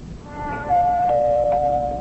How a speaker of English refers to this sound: Did you ring his doorbell